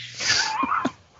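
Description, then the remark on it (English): A dog whimpers with a high, wavering whine that slides in pitch, broken by a couple of soft yips and ending on a short sharp yelp. No one speaks. “Dog.”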